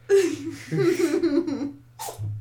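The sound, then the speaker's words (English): A small, quick sneeze bursts out near the end, sharp, following a couple of seconds of soft, high-pitched vocal squeaks and breathy sounds. “You're so cute little sneeze.”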